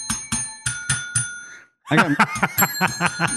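A small bell dings about five times in quick, even succession, its bright tone ringing briefly, then after a short pause people laugh while the bell keeps chiming.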